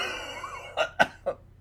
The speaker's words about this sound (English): Sorry about that. I'm just open mouth, coughing all over the place today. I'm a little sicky boy.